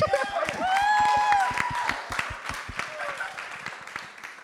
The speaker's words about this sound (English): Today is a special Sunday for us because we are launching our co-groups. You guys can clap for that if you want. It's all good.